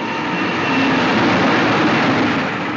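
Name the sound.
express train rushing past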